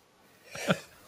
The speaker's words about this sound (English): And now I can't stop sneezing.